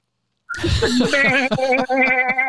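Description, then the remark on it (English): A baby goat bleats loudly, a long wavering cry that starts abruptly after a brief silence and keeps quavering for about two seconds. “That poor goat. He's getting assaulted.”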